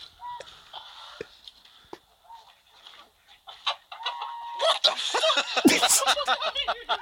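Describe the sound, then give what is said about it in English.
Vulture calls play through a phone speaker: scattered clucks and squawks that start sparse and quiet, then swell into a dense, loud burst of raspy, overlapping cries near the end. “Vulture, bro. I'm telling you.”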